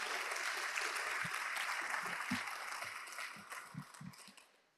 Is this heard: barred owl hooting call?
no